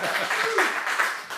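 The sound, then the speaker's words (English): A short burst of steady crowd applause, a dense, even wash of many hands clapping with no distinct individual claps, with a faint voice briefly showing through. “And where was the fucking applause?”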